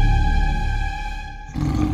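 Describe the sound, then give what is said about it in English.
A coyote growls loudly at a person backing away, a sustained, rough snarl that cuts off abruptly and gives way to a burst of harsher, noisier snarling. “We can be friends, Coyote. I like animals. There's no reason to hurt me.”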